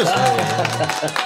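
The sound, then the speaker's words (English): A brief burst of crowd applause, a dense patter of many hands clapping with excited voices and cheering mixed in, fairly loud and steady throughout. “honestly, I kind of where's me applause?”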